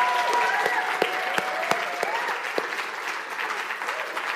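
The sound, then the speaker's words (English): An audience claps steadily to welcome volunteers to the stage, a dense wash of many hands with a few sharper individual claps standing out, sustained at even loudness throughout. “So can we give a warm round of applause and welcome to the stage”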